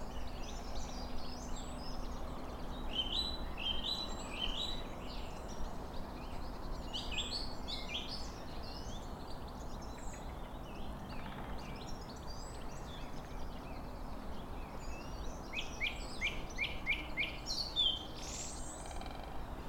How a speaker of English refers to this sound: Let's see if we can meet this song thrush up here. Yeah, it's a brilliant song thrush. Some goldfinches tinkling overhead. Okay, let's have a bit of song thrush serenade.